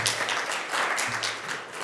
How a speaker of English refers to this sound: Come on and clap your hands and tell the Lord thank you.